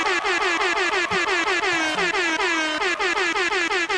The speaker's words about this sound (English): Yeah, keep cheering. This is... More cheers. More cheers. More air horns.